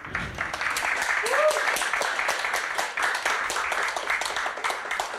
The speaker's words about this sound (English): So if you can give a round of applause to this book alone.